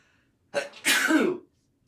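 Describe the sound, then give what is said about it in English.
A single loud sneeze: a brief sharp intake followed by a forceful, breathy burst lasting about half a second, with silence on either side. “I'm about to sneeze.”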